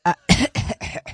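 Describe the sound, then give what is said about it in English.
A person coughs in a quick fit of about five harsh bursts, fairly loud, with brief gaps between them and no talking. “there's a cough button. You're a professional.”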